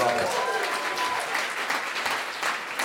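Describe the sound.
A live audience claps steadily, a dense, continuous patter of applause that stays fairly loud for the whole stretch, with a brief tonal voice or cheer near the start.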